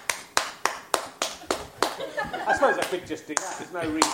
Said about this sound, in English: That's quite a silent clap. It's not just clapping, it's clapping like a clapper.